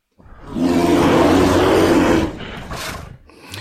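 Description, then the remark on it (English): A bear's deep, growling roar swells loudly for about two seconds, then trails off into a rougher, breathy rumble and a short huff at the end. “Bear. This is it.”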